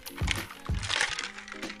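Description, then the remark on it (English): A plastic water bottle crinkles and crackles in a few sharp bursts as someone takes a water break, drinking from it in hot weather in Jamaica, with faint gulps in between and no talking. “Hold on, let me take a little water break.”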